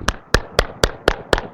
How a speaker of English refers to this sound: I was clapping.